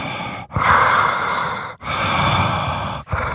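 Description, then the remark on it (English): A voice imitates the heavy breathing of Michael Myers from the Halloween film intros: three long, loud, raspy breaths in steady succession, each separated by a brief pause, with no other talk. “They should have been doing some like heavy breathing.”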